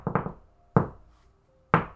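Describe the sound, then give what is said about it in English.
A distinctive knocking rhythm on a door: three quick raps in a burst, then two louder single knocks about a second apart, sharp, with no talking. “I'm just gonna do my knock on the door that's also, like they would know it's me because I'm the only person that knocks like this.”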